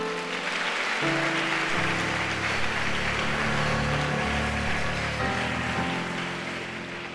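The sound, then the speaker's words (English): A crowd claps for the pastor steadily in a dense, continuous wash of applause for about seven seconds, while sustained keyboard or organ chords shift beneath it, fading slightly at the end. “Clap for pastor.”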